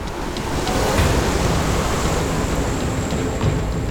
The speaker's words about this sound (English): The Wani was pulling him toward a massive whirlpool.